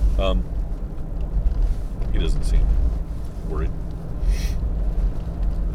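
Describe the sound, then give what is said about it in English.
A steady, low engine rumble fills the cabin throughout, like a truck idling or driving heard from inside, with a man talking briefly over the droning noise. “Kind of would rather not die if this truck explodes.”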